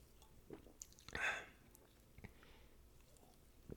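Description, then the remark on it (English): A quiet sip from a Bang energy drink, with a short slurping burst in the middle surrounded by soft mouth clicks and lip smacks, no talking. “As a second sponsor by Bang, let me take another sip.”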